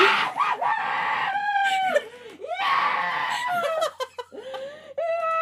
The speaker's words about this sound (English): …'s screaming into her fucking stuffed animal right now.